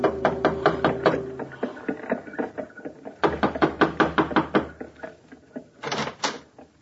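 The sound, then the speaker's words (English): Rapid knocking on a door in a more or less fashionable part of town, in two loud bursts of quick raps, a short pause between them, then a few softer knocks at the end. Clear, with no talking. “Gave the driver his fare, received a wink in return, and knocked on a door.”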